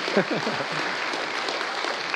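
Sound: audience applause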